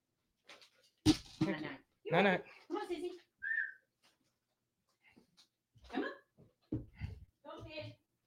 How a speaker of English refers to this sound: My dog wants to come hang out.